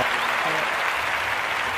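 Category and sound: crowd, crowd applause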